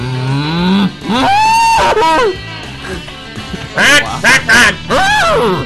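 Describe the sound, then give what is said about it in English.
A rapid series of loud cow moos, some rising and some sliding downward, coming in quick bursts with short gaps and overlapping calls toward the end. “Here we go with the cow sounds.”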